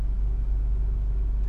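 A steady, deep road rumble from a car driving through downtown Columbus, heard from inside, continuous and unbroken for the whole moment with no clear talking.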